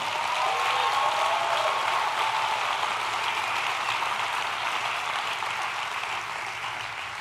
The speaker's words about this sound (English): Can we just give the Lord a clap?